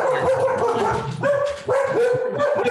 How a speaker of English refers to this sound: these are our therapy dogs, not to minimize it, but just the dogs are barking, but we have three English Springer Spaniels